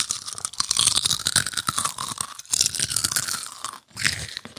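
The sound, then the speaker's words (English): Loud crunching of folded crisp snacks being bitten and chewed by more than one person at the same time, with dense bursts of crackly bites running nearly continuously, a brief pause near the end before more chewing resumes. “It has to be a folded one. Yeah. Okay. They make extra crunch.”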